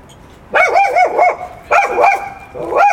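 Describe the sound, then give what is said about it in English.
A dog barks loudly outdoors on a warm summer day in quick, repeated bursts: three runs of rapid, yappy barks separated by short pauses, with no one talking over them. “She came out here and we didn't even know what we're barking at.”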